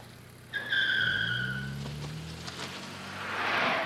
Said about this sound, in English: What the hell was that? Sounded like a drag race.